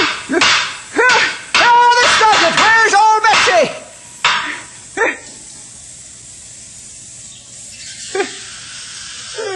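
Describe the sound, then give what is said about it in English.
A dog barks loudly in a quick burst of sharp, repeated barks for about four seconds, followed by a couple of isolated barks and then near silence. “Dog. Good idea.”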